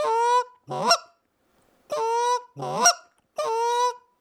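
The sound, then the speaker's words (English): A person calling to geese coming into a decoy spread alternates goose moans with quick, sharp clucks: three drawn-out honking moans, each of the first two followed by a short rising cluck. The calls are loud, with brief silences between pairs. “I'll just hit them with a really quick cluck. They'll do that moan.”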